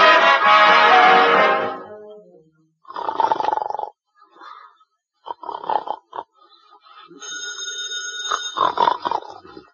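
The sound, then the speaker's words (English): A telephone bell rings at night near the end with a steady, bright tone, following a loud, rumbling snore of a sleeper at the start and a few scattered rustling and vocal sounds. “the telephone is ringing.”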